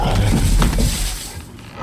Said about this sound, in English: Lying there, attempting to regain its breath, a sudden roar resonated through the tiled room and echoed off the gleaming metal worktops.